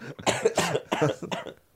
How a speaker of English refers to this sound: she just coughs and coughs and coughs